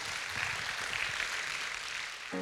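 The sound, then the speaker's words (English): A church audience at Passion Life Church claps steadily and densely throughout, a sustained wash of applause from a large gathering, with a voice or tone entering just at the very end. “And if you want it, say yes and give him a good round of applause.”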